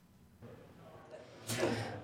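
A single sneeze: a short, airy intake of breath followed by one sharp, noisy burst with a brief voiced edge, fairly loud against a faint background hum.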